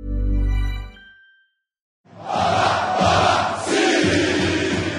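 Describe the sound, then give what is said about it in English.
After a short low tone and a brief silence, a crowd of thousands of Brazilian football fans at the airport in Rio de Janeiro, waving flags and holding up banners, erupts into loud, continuous screaming and roaring that surges and holds for several seconds. “The fans wave flags, hold up banners and scream their lungs out.”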